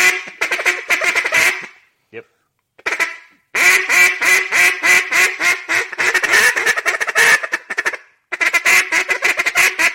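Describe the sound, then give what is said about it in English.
A duck call blown in loud, rapid bursts: quick chattering feed calls alternating with sharper, evenly spaced hen quacks, separated by brief pauses. “So you just do a couple, do three, and then feed, and then hen, and then back to feed.”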